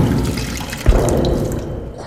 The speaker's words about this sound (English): the HMS Galileo is drawn straight into the creature's jaws. Sailing between teeth the size of skyscrapers, the ship freefalls into the belly of the beast before crashing into a lake of digestive acid.